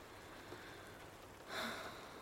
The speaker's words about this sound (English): Oh, I love the rain, the sound of it.